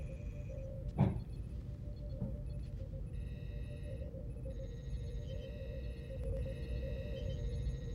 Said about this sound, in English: you get a chirping sound coming through the communications as Vren says, "Captain," and then you hear Prawl say, "I have it, Lieutenant."